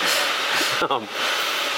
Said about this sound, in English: this, by the way, is the world's longest espresso machine, I think.